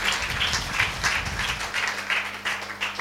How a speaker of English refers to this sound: Give the Lord a hand, rise to your feet. Oh, are you clapping like you go to a funeral? Hey, clap.